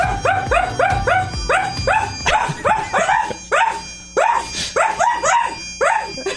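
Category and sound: animal, dog barking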